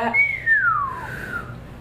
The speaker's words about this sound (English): Those are weak whistles.